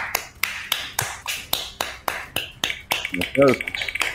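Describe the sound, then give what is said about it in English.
Crisp finger snaps repeat in a quick, steady rhythm, a dozen or more sharp clicks, as a person snaps fingers to spin a wheel, with a short burst of voice near the end. “I'm going to try snapping to spin the wheel because spatial awareness seems to screw over people every time they try to spin it.”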